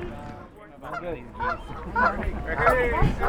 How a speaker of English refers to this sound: I hear the geese. The geese are singing a song for you, wedding song for you.